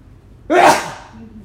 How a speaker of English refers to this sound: Excuse me. Got a loud sneeze.